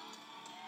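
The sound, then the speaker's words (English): A woman's high, sustained scream from a viral video from Vegas, somewhat muffled and thin like playback, lasting under a second with no talking over it. “Oh, wait, it's my best part. It's when she screams.”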